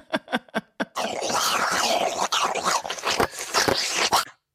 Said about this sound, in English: I had to give a little extra slurp in there.